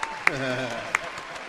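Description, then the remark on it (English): A brief burst of crowd applause for a guest, with a voice cheering over it and a couple of sharp, distinct claps standing out near the start and middle. “Hey, clap it up for the definitely, niggas.”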